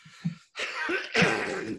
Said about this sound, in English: Excuse me as I clear my throat.